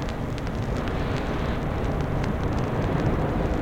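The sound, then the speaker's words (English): Steady white noise of super slow waves, played for sleeping, with a deep, rumbling low end, loud and even throughout, with no noticeable swells or breaks and no voices. “Now it's white noise for your sleeping pleasure.”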